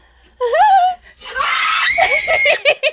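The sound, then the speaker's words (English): A loud, shrill scream in a skit recorded six years ago rises sharply, then breaks into a longer, raspy, strained shriek that trails off in a few choppy bursts, intense. “Why did you scream so hard?”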